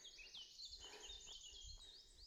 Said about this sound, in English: Going back into the forest, birds are getting louder.